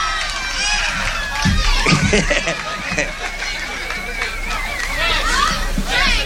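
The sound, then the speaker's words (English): A noisy audience cheers and chatters throughout, with a little girl's high, shrill voice yelling out above the din. “Don't yell, honey. You'll bust your lungs there.”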